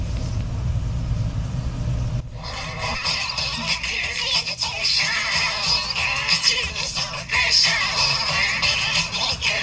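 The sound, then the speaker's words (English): A song plays through a recipient-operated paper record player, one of 200 made, thin, scratchy and hissy, with the tune buried in crackling noise. It follows about two seconds of low rumble. “200 recipient-operated paper record players. And this is an actual recording of how it sounds.”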